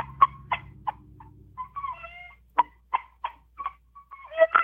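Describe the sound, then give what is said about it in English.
A game call imitates a chicken: a series of sharp clucks in an uneven rhythm, broken by a short warbling squawk in the middle, with no one talking. “Do a chicken.”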